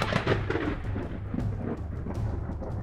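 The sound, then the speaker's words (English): A deep, rolling rumble of thunder from a lightning strike fills the whole stretch, loud and sustained with a low roar and a crackling hiss above it, no voices present. “Lightning struck to burn forests.”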